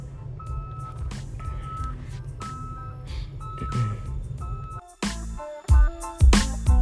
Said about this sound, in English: This dump truck was backing up. I thought he was finna hit my car. Yeah, I'm sitting in the car, but he was just beep, beep.